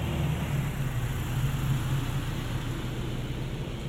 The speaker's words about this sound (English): Okay, now that car was on the left and just went from front, or left from back to front.